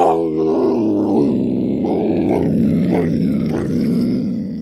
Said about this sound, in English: A roaring? A roaring, yes. Wow. It was very, very interesting. And at first, I didn't know what it is. But after a few seconds, I realized it was a mountain lion, definitely.